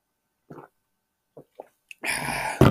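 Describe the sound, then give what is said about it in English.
Someone takes a swig of ice water: a few soft, separate gulps, then a sudden loud, breathy rush of sound, like an exhale or ice shifting, with no talking. “I gotta take a swig here.”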